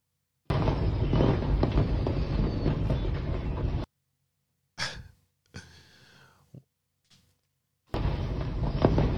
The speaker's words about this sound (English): A car just drove in to the fireworks store, and it is a car drove into the fireworks store.